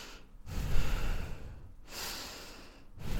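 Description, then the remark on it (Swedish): Slow, deep breaths in a square breathing exercise, a long airy inhale and exhale repeating in a steady, deliberate rhythm with short pauses between, no talking. “Ja, jag andas i kvadrat. Ja. Försöker ta djupa andetag.”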